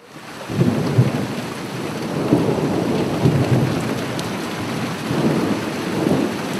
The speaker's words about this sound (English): As we are walking back up the long timber jetty after the dive, the rain begins to fall, and by the time we arrive at the lodge, a strong westerly wind has all of a sudden blown up.